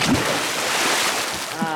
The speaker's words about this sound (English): And then go out the window, jump into the moat, and you will arrive. You remember this. You hear splash.